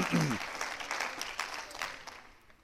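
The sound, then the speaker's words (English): An audience on a campus claps hands to the Lord in thanks, in a dense, steady patter of many overlapping claps, a brief voice rising at the start before the applause gradually thins and fades. “Why don't you clap your hands to the Lord and just thank Him for what He's doing here on campus.”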